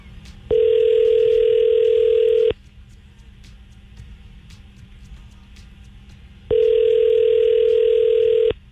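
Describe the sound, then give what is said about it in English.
A telephone tone while a call is dialed again: two steady, mid-pitched buzzing tones, each about two seconds long, separated by a four-second pause over a faint low hum. “But that wouldn't go to a busy signal, would it? Let's try dealing it again.”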